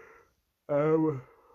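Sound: yawn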